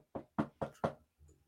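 Four firm, evenly spaced knocks on a door, fairly loud, followed by a softer, duller thump. No one speaks.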